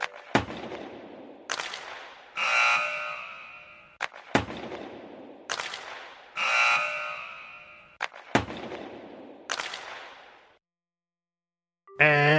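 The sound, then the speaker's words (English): Sharp hockey stick-and-puck cracks repeat in a pattern with loud tonal blasts between them, then a short pause before a harsh electronic buzzer, the hockey buzzer signalling the end of the hockey match, cuts in right at the end. “And that was the hockey buzzer. And the hockey buzzer signals the end of the hockey match.”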